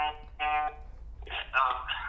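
A gentle phone alarm in Melbourne plays a soft, melodic tune in two short bursts of bright, bell-like tones, moderately loud.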